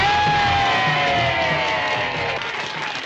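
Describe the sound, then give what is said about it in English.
A big crowd roars and cheers wildly after Dolemite's performance, a dense wall of yells, whoops and shrieks with a few high sustained screams cutting through, loud and continuous throughout. “And this is where the crowd finally goes wild.”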